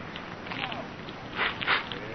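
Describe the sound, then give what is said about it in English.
A newspaper, deliberately set alight while being read, burns with a soft steady crackle and rustle that swells into two louder crackling bursts near the end. No voices. “Hey, the paper's on fire, Liz!”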